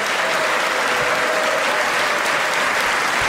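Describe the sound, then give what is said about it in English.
A crowd applauds steadily after a speaker's line about taking drug cartels, drug dealers and human traffickers out of business, a dense wash of clapping hands that stays loud and even throughout, with no voices standing out above it. “Applause line.”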